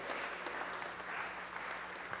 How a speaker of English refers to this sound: And clap to the one who's worthy tonight before you guys take a seat.